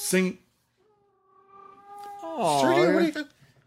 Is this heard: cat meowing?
yes